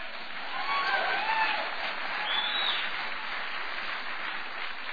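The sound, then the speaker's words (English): Steady audience applause at a celebration, a dense wash of many hands clapping at an even level throughout, with a few faint high chirps or whistles poking through early on. “That's the first time I've heard people applaud for breaking one of the Ten Commandments.”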